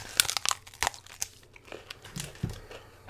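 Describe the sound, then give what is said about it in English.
Crisp crunching as someone takes another bite of a Crunch Bar, a crisp rice chocolate candy bar, a quick cluster of sharp crackly snaps followed by softer scattered crunches, with no talking. “I gotta go in for another bite.”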